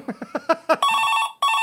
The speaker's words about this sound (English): Oh! Is that the phone? I'd better get it. It's bound to be somewhat important.